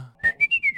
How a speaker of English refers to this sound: I can whistle really well. Please demonstrate it. Oh, right now? Yeah.